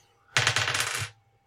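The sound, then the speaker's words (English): Dice clatter and tumble across a hard table for under a second, a dense rapid rattle of small clicks that stops abruptly, fairly loud with no voices. “That was much better. Those are nice dice.”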